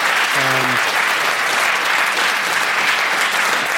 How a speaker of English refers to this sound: That clapping has given me less time.